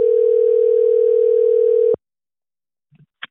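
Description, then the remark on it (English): A telephone ringback tone on an outgoing call to the lawn business Lambert Lawns in Oklahoma: one steady, loud two-second burst, then silence broken only by a few faint clicks near the end. “Let's see if he'll answer the phone for us.”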